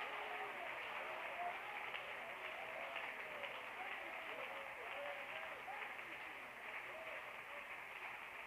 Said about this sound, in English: But we're here tonight, and Jesus, we applaud you because you are great, and you are greatly to be praised.